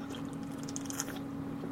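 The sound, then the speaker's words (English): Quiet fizzing as unflavored LaCroix sparkling mineral water is sipped: scattered tiny bubbly pops and crackles over a steady low electrical hum, with no one talking. “I'm sipping a pure LaCroix mineral water”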